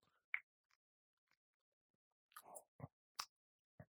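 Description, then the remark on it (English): Someone quietly sips bourbon from a glass: a soft slurp, then a few scattered wet lip smacks and tongue clicks in otherwise near silence, with no talking. “Let's taste it.”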